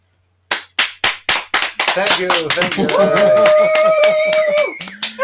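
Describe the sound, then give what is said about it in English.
An applause sound effect: a few sharp, evenly spaced claps that quickly swell into loud, continuous clapping from a crowd, mixed with cheering voices and a sustained whoop or whistle. “Can we edit some applause underneath that?”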